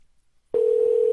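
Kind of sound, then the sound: signal or alarm, phone call ringing tone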